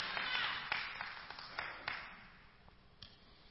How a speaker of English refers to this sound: Come on, clap the Lord. Come on, people. Come on, praise the Lord.